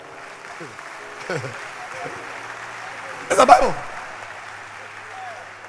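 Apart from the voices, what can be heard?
audience clapping hands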